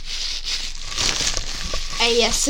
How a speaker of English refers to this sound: ASMR? You're just ripping up wrapper. Wrapping. Paper.